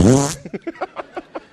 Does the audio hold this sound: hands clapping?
no